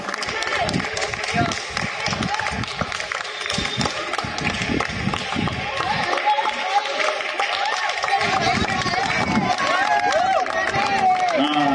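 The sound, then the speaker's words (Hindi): A crowd applauds loudly and steadily for a 105-year-old woman who won a 100-metre race, a dense wash of clapping that carries on throughout, with voices calling out and chattering over it. “जोरदार तालियां, 105 साल की यंग लेडी।”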